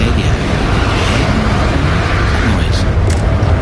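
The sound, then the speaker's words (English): A jet plane coming in: a loud, steady roaring rumble with a broad hissing whoosh that holds at constant strength for several seconds, with faint voices mixed underneath. “It's your plane that's coming in now. Ah, there it is!”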